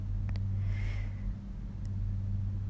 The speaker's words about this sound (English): I hope y'all heard that. Oh my God. I think some more thunder is coming. And it's still not raining. It's still not raining.